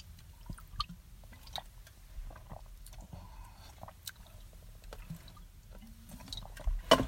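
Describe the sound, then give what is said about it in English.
Someone drinking: a series of soft, wet swallows and gulps with small mouth clicks over a low steady rumble, with no talking. “I'm just going to finish my drink and shut the hell up.”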